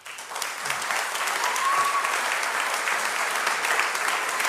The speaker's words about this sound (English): Because I'd love to just applaud you and honor you.